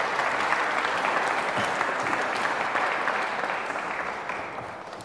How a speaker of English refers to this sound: Wonderful volunteers. A round of applause for wonderful volunteers. Come up, come up, come up.